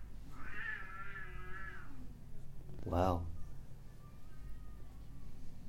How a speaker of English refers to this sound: Now cats are fighting in the garden. You're getting a lot of audio effects here tonight.